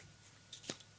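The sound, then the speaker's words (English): A wooden pencil case full of pencils is handled, giving two quick, soft rattling knocks over a quiet background, with no talking. “Is this a giant pencil? It's a wooden pencil that has pencils in it.”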